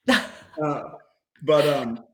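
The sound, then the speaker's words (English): A dog barks three times, picked up on a microphone: a short sharp bark followed by two longer, drawn-out, whiny barks with brief pauses between them. “And is your dog on the mic? Is that your dog?”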